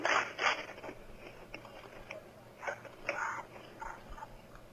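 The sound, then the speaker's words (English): Several mechanical clicks and short metallic sliding scrapes of a shotgun come in bursts, louder at the start and again near the end, over a faint low background hum. “You hear the shotgun clicking, and I'm going.”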